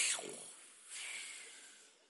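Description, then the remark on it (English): A voice softly imitates the quiet, non-snoring breaths of a man asleep on a pillow in a boat during a storm: a gentle airy inhale, then a longer hushed exhale, faint, with no words spoken. “You just sort of hear that he's breathing.”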